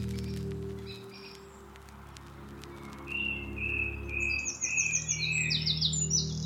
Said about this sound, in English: Just had to pause and take in this astonishing performance by Song Thrush. With a backing singer of a wren.